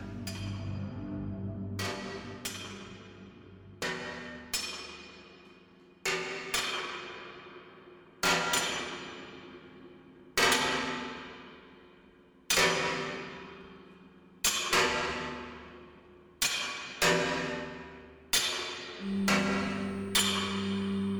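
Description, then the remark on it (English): A hammer pounds in slow, steady blows about two seconds apart, each sharp strike ringing out and fading before the next, with a low tonal hum underneath and no voices. “So, if your lies or actions ever hurt someone, on purpose or not, listen close for old Skinny's pounding hammer.”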